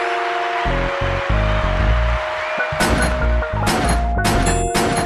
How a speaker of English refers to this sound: I do gunshots in the mini, but I guess today is fireworks.